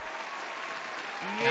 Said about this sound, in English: The pretend people clapping, you mean? Yes. Hell yeah, hell yeah. Look, they're going crazy for you, girl. Going crazy.